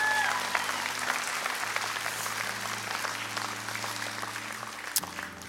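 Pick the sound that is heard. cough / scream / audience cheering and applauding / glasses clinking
audience cheering and applauding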